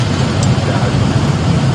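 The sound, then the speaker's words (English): A LIDAR-enabled car drives around a corner and automatically stops for a dummy child in the way, a steady low rumble of engine and road noise that stays constant and fairly loud throughout the short stretch, with no voices. “Look at him, he's coming around the corner, and there's the dummy child. Oh, the car automatically stops.”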